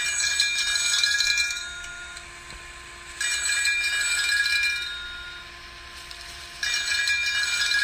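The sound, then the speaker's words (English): A phone rings to signal an animal in trouble, in repeated bursts, a bright, shrill, trilling bell tone that sounds for about a second and a half, pauses, then rings again three times in all. No one speaks. “The phone is ringing.”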